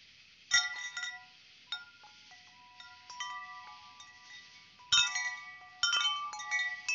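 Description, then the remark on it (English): A wind chime tinkles outdoors at a home in a residential neighborhood, its bright metallic tones struck in irregular clusters and left to ring and fade between gusts, with a faint low rumble underneath and no voices. “Nice park bench, wind chime, just enough solar lights in a beautiful neighborhood.”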